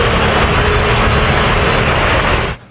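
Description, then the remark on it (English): The Super Bowl 50 stadium crowd boos Tom Brady as he is announced among the former Super Bowl MVPs in attendance. The boos are a loud, steady, rumbling roar that holds for about two and a half seconds, then cuts off abruptly. “Yep, you can hear them boo birds from Jim Nance, CBS Sports.”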